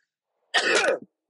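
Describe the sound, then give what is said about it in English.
A single sharp sneeze bursts out of silence, a loud, breathy, noisy blast lasting about half a second with a short trailing catch at the end, then quiet. “One second, I got a sneeze.”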